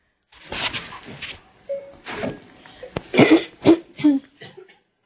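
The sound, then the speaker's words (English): An audience member coughs repeatedly, a series of harsh, rasping bursts spread over several seconds, moderately loud, with a few throaty, voiced coughs toward the end. “I'm making other people cough.”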